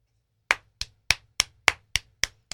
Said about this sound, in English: That's me clapping.